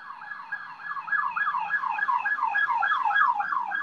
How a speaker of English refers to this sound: Well, there goes an ambulance.